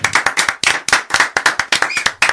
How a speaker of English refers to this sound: Let's clap it up for … one time. Let's do that, man.